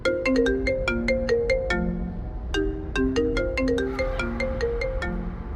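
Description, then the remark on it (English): A bright, melodic phone ringtone, a randomly picked tune, plays a quick phrase of short, chiming notes, pausing briefly before repeating the phrase, clear with no voices. “I went to the ringtones and pressed on a random tune.”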